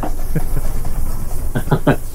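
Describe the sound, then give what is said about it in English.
A train sound effect pulling into a station: a steady hissing rumble with several short, sharp chuffing bursts near the end, fairly loud and with no talking over it. “All right, the train has stationed.”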